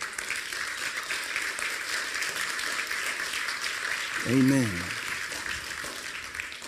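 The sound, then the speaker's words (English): An audience claps in praise for good leadership, a steady, dense patter of many hands running the whole time, with one voice calling out briefly over it near the end. “And I thank God, and I think this is a good place to put at least a 15-second hand clap of praise for good leadership.”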